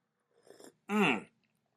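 A short slurp of hot coffee from a cup, a quick noisy sip followed right away by a loud, satisfied voiced 'ahh' from the drinker.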